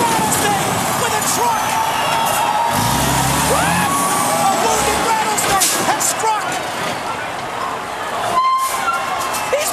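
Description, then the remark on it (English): A heavy truck with Stone Cold Steve Austin in its cab rumbles, with loud hissing bursts of air brakes over a dense, noisy background; muffled voices seem mixed in. “Stone Cold Steve Austin in the cab of that truck.”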